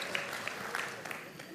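Faint, brief patter of audience applause, a soft steady wash of many scattered claps with a few sharper pops, and no voice rising clearly above it.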